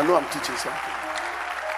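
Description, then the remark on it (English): A crowd claps at the speaker's request to clap louder, a dense, continuous patter that holds at an even level throughout, with a man's voice briefly heard over it at the start. “Or if you can clap louder, I know I'm teaching something.”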